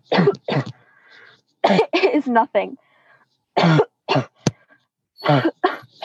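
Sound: man coughing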